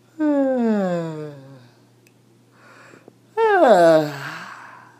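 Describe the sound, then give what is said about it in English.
A person fakes two drawn-out, voiced yawns into the mic, each sliding downward in pitch and trailing off into breath, separated by a short quiet pause. “That one was actually a lie. That wasn't really yawn.”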